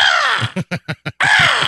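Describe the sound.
A person loudly imitates a raven, giving a long harsh croak, then four quick clipped caws in a row, and ending with another drawn-out rasping call, alone.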